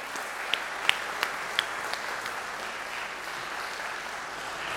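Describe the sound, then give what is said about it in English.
A church audience applauds steadily after a scripture reading, a dense wash of many hands clapping at moderate volume, with a few sharper individual claps standing out near the start before the sound settles into an even roar. “I feel like we should give George a round of applause for all of those words”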